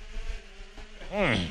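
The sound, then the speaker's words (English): A faint, steady buzzing hum gives way to a louder, high-pitched drilling whine whose pitch swoops up and down, like a dentist's drill, over a low background rumble. “It's drilling of some sort.”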